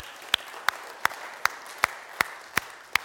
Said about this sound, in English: You can give a clap, that's fine. Amen.